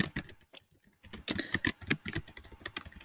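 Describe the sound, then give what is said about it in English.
Rapid, irregular clatter of keys being struck on a computer keyboard, fairly quiet, with a brief pause early on before the tapping resumes in quick bursts. “Who's typing?”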